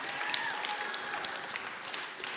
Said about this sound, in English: Y'all clap for Sam.